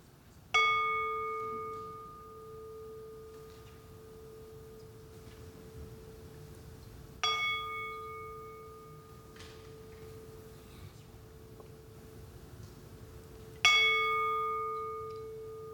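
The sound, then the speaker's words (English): A bell is struck three times at slow, even intervals, each clear metallic tone ringing out and slowly fading before the next strike, with no voices present. “Here's a second bell.”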